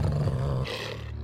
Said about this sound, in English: I howled again, jumping off the bed, four padded feet landing on the carpet. Clumsily, I ran to him, to the other David, a deep growl thundering in my chest.